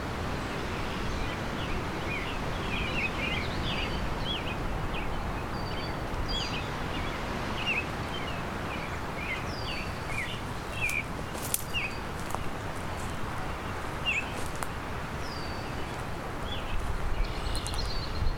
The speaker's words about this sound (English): It's a sheltered little patch of pine. can hear an oriole. There's a Baltimore oriole. A high-pitched whistle.